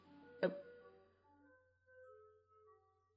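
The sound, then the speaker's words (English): An ice cream truck jingle plays faintly, a simple chiming melody of sustained tones moving up and down in pitch, preceded by a single sharp knock near the start. “I hope you hear that, because that's ice cream. That's the ice cream truck.”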